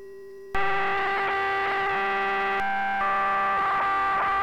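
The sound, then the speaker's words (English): A loud, buzzy synthesizer tone with dense harmonics, its pitch shifting and wavering in steps, holding steady for a while before bending again. It plays alone with no voices. “But we could also be doing this internally with the pitch modulation too, right?”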